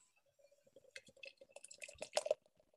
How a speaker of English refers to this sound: Again, it pours out beautifully lively in the glass.